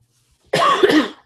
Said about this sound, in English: Sorry. No, I'm just coughing over here.